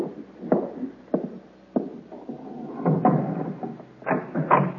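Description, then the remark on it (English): Heavy knocking on a door by a Roman centurion: three slow, evenly spaced blows, then a quicker, more insistent flurry of raps, fairly loud, with no talking. “At the door. A knock like that, it's not the knock of a friend.”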